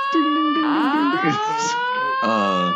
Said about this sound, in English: Do we sound the alarm? I think, yeah. All right, let's sound the alarm. Is it? Yeah, there it goes. There's the alarm.